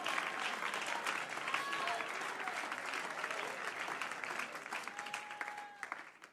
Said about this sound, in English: Come on, clap your hands unto the Lord and give him praise. Come on, somebody praise him right now.